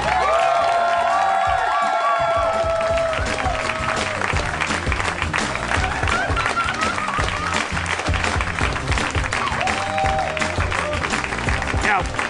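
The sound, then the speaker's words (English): The audience of the Harmontown live show in Hollywood, California, bursts into sustained, loud applause with cheering and whoops as Dan Harmon is introduced. Dense clapping fills the whole stretch while voices shout excitedly over it. “Put your hands together for the mayor of Harmontown, Dan Harmon.”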